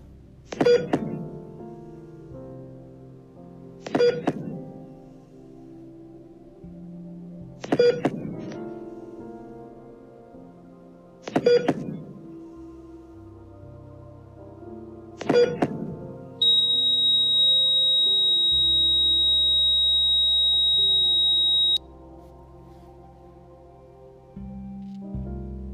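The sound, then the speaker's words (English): A heart monitor beeps five times at slow, even intervals over a low hum, then holds one long, steady high-pitched tone like a flatline before it cuts off. “That is the sound of a heartbeat of a dying culture.”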